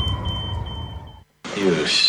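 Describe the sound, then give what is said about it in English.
A smoke alarm sounds a shrill, steady electronic tone for about a second over a low rumble, cuts off abruptly, then a burst of broad hissing noise follows. “Are you sure your smoke alarms are working?”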